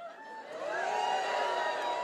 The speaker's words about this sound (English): A little bit of booing, a little bit of positive.